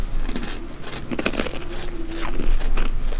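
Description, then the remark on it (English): Loud crunching as someone bites into a hard, sugary biscuit, with repeated brittle cracks and chewing over about three seconds, no talking. “Definitely got the crunch factor.”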